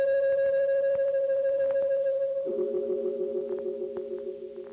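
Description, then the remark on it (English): A deep-toned bell clangs thunderously once at night across an empty glade, its long metallic hum lingering and slowly fading with an echoing, reverberant tail. “And there was the sound of a deep-toned bell, clanging thunderously once and echoing across the empty glade.”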